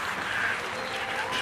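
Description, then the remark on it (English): A crowd at a race claps steadily to welcome a legendary winner, a dense wash of many hands applauding at once, fairly loud and sustained without pauses or voices standing out. “The crowd goes well.”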